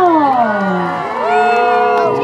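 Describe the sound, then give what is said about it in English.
A loud crowd cheers wildly as racer number one, Swinus, is introduced on the outside, with high whoops and shrieks rising and falling over a continuous roar for a couple of seconds. “And the crowd goes wild.”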